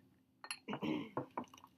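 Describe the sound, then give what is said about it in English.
Nitro Pepsi, a vanilla draft cola, pours into a cup until it overflows, in a short, uneven splashing stream, with a few sharp clinks and gurgles breaking through over less than two seconds. “All right, pour it hard.”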